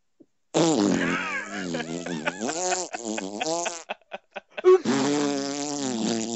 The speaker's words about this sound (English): I don't know where it came from, but that's what Raw did tonight. It went to my mom's house, suplexed her so hard, she farted.